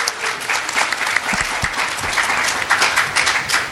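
A crowd applauds steadily, a dense wash of many hands clapping at once with no pauses, holding an even, fairly loud level throughout.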